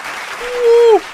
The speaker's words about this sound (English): Thank you. Thank you. Thank you. Round of applause.